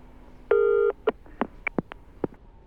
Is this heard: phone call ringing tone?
yes